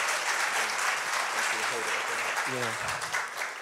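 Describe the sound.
Sustained audience applause, a dense crackle of many hands clapping steadily at a loud level, with a voice briefly speaking underneath partway through, as one person's story ends and the next speaker is called up.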